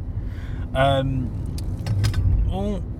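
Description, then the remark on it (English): A loose water bottle rattles and clatters in short bursts inside a moving car, over steady low road rumble, with a couple of brief voiced sounds. “That's my water bottle, it's fine.”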